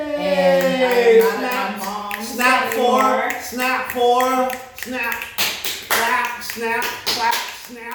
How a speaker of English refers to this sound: Snap, clap, snap, clap, snap, clap, snap.